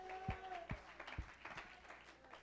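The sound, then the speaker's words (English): An audience at a church service claps their hands in response to a preacher's call to clap and shout to God: a few sharp, spaced claps give way to looser, scattered clapping, with a sustained tone and faint voices underneath. “Oh, somebody clap your hands and shout unto him with a voice of triumph.”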